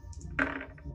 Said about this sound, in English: No, I need to roll these dice here.